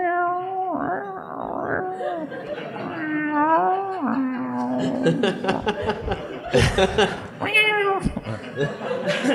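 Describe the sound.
A human voice imitates a dying cat: drawn-out, strained yowls that waver and slide in pitch, loud, breaking into choppy, laugh-like bursts near the end.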